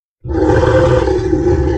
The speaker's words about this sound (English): Another chorus of Morrowdin roars came, all from behind them this time.